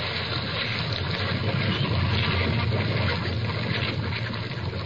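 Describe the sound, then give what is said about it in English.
A steady, loud roar of water pouring like mountain torrents through a breach in a ship's starboard bow after a whale struck it, with a deep rumbling undertone and no voices. “Through the breach, they heard the waters pour as mountain torrents down a flume.”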